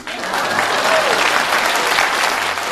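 A crowd applauds steadily, many hands clapping in a dense, even roar that holds at the same loudness from start to finish, with no voices standing out.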